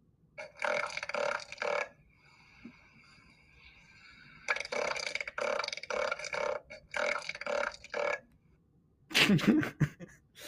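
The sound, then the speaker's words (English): A southern elephant seal bull, the beachmaster of a harem on a southern island, bellows to attract females in breeding season, its proboscis amplifying loud bursts of rapid, throbbing pulses like giant burps, with short pauses between volleys and a harsher, rasping blast at the end. “the purpose of their proboscis is to vocalize their dominance to both females”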